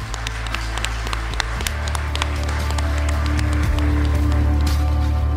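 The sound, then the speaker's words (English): Sustained applause from an audience, a dense, steady patter of many hands clapping at once that holds at an even level throughout, with a low background hum beneath it. “Well, I think these guys deserve a very big round of applause.”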